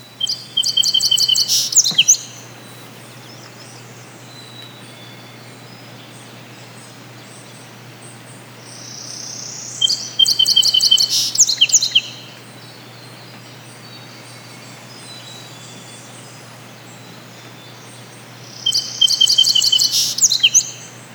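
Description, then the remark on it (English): Songbirds chirp in the morning in three bright bursts of rapid, high-pitched notes spaced several seconds apart, with quiet background hiss between the phrases and no voices. “When you might make a cup of tea and wake up in the morning to hear the songbirds.”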